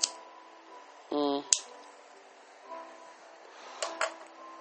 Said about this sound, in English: I'm going to light a cigarette, so if you hear, if you hear any clicking, that's me doing that, so.